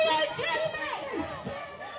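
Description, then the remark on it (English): A protest crowd outside the Supreme Court building on First Street murmurs and calls out, many voices overlapping into a dense, steady babble with no single speaker standing out, holding a fairly even, moderate loudness throughout. “And I'm standing on First Street right now, and I'm overlooking the crowd.”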